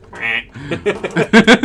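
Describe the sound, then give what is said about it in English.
A person voices a penguin impression that comes out as loud, nasal duck-like quacks: a drawn-out honk, then a quick run of shorter, choppy quacks, alone with no talking. “I can't even do a proper penguin impression.”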